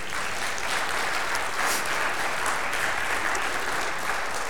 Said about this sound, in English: I'm glad you applauded for them, and I give them that compliment, because in a minute it may sound like I'm not complimenting what they do.